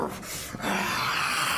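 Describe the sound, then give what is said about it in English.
A voice imitates the roar of a wounded, burning creature in a tabletop game after it is shot in the eye: a loud, raspy, growling bellow that starts with a short burst, then swells and holds steady for about a second. “and begins roaring again. This guy is in a lot of pain right now.”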